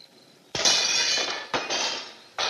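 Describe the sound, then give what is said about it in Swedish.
In a film scene, rocks are thrown through the windows of a house. Window glass shatters loudly, three separate crashes in quick succession, each followed by a bright, lingering tinkle of falling shards. No voices are heard. “Där de ska krossa fönster i ett hus.”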